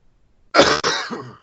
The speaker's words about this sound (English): Sorry, I didn't mean to cough into the mic.